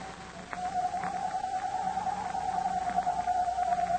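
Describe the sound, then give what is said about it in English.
A voice imitates a hoot owl's screech in a Captain Midnight radio drama scene, above the sighing of the wind: one long, unbroken, high-pitched wavering cry held steadily throughout, over a faint hissing, humming background. “imitating the screech of a hoot owl.”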